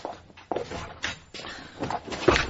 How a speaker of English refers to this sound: Being a field agent, however, I think I'll just open the door.